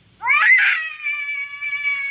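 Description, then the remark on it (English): A loud, drawn-out cat yowl rises sharply and then holds a long wavering wail, strident, with no one talking. “Did you wake me up so I could listen to that cat concert?”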